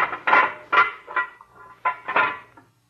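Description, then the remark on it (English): A small steel door opens with a run of metallic clanks and rattling scrapes, about six uneven bursts over three seconds, ringing briefly over a faint low hum. “Now, we go through this little steel door.”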